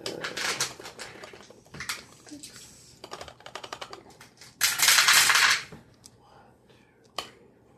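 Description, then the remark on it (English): Eight dice, rolled as a stun roll, clatter and tumble across a hard surface, with sharp scattered clicks before a dense, loud rattling burst and a few last settling taps. “All right, go ahead and give me a another stun roll, please. 8 dice.”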